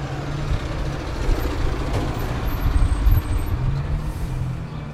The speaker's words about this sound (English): Oh, anyway. There's a truck.